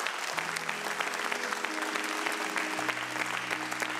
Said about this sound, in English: Come on, let's give the Lord a round of applause today.